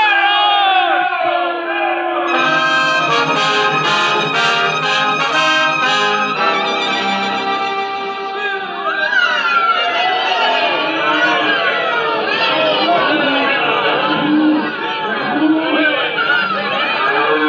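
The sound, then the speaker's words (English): A large crowd of townspeople in Abilene cheers and yells as cowboys ride into town on August 14, 1865. Many overlapping voices shout and whoop loudly and continuously, with a brief dip midway before the clamor swells again. “People cheering and yelling.”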